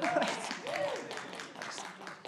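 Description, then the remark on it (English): Scattered, fairly soft hand claps, a few irregular smacks from a small audience as a preacher announces a seven-week series on the book of Galatians, mixed with a low murmur of voices and laughter. “I won't clap until the end.”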